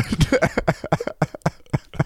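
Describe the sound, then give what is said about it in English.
A fairly loud throat clearing made of a rapid string of short, rough bursts repeating for about two seconds, with no talking around it. “I just had to clear my throat.”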